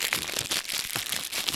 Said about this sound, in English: you can pay to hear us crumpling aluminum shit.